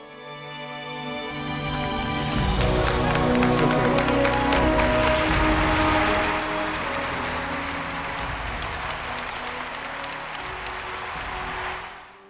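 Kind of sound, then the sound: crowd, slow clap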